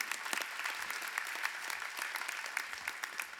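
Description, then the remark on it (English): An audience claps steadily throughout, in response to a sermon line about God's grace, a dense, continuous patter of many hands with a bright, even texture and no voices on top. “Your failures, yeah, you can clap for that.”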